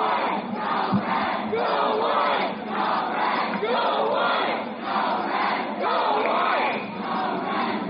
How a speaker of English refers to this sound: Well, the Laingsburg crowd into it. Go red, go white.